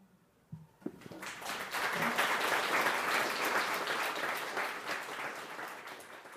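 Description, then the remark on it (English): An audience at a poetry reading breaks into applause after a poem and a brief pause, a dense, sustained wash of many hands clapping that swells quickly and holds steady before easing slightly toward the end. “They clapped anyway.”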